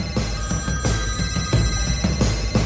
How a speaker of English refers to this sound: As soon as their phones started ringing, beeping, and buzzing, a whopping 80% of our volunteers couldn't resist the call, leaving just two people who were able to remain in their seats.